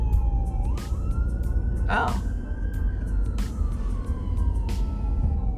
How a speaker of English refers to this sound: And so, sorry, y'all hear sirens? I just don't see them.